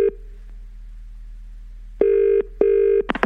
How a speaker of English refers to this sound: Anyway, we've had another phone call. Oh, boy.